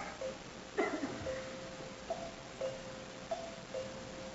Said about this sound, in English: Now what's keeping him? Well, he always was a sound sleeper. Mary, a dead man would have heard the bell by this time.